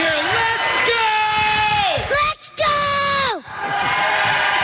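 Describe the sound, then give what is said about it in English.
A kid screams excitedly at an Eagles football game: two long, loud, drawn-out yells that sag in pitch, split by a brief gap, over a steady crowd roar. “Scream like you're at the Eagles game.”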